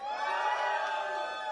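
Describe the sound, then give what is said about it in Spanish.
A crowd shouts loudly together, a sustained, dense roar of many voices holding steady at full volume for the whole moment. “But come on, que nos escuchen todos los que nos están mirando para que se animen a gritar.”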